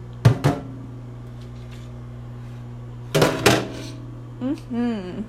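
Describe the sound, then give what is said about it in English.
Dishes clunk down into a sink in two or three sharp clattering knocks over a steady appliance hum, and a brief voice murmurs at the end. “Putting those dishes in the sink.”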